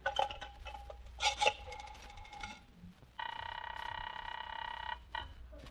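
An old telephone is handled with clicks and rattles of the receiver, then its bell rings in a loud, sustained metallic trill for about two seconds before a short final ring. No one speaks.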